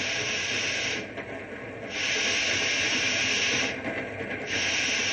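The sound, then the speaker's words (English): A train rolls steadily along the rails with a loud, continuous rushing hiss and low rumble that briefly eases twice before surging back. No voices are heard. “You ain't gonna stop this here train, are you?”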